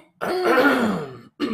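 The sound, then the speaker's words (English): A drawn-out, rumbling throat clearing lasting about a second, fairly loud, followed by a brief second rasp after a short pause. “My voice just got all yeah, clear your throat. I'll clear mine too.”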